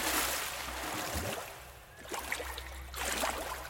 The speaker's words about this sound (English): I drop the necklace into the water. It sinks quickly and I immediately search the bubbles for my treasure. When I can't find it, I panic and begin splashing about.